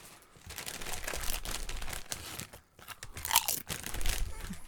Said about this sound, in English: They make really good crunch noises. One wrap snack for the road, yeah.